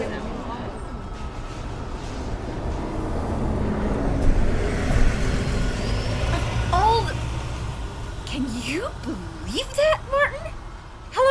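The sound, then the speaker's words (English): A bus's engine rumbles and swells as it drives away, gradually receding, while muffled, indistinct voices rise near the end. “Okay, that's all this bus can hold. You all are gonna have to wait for the next bus.”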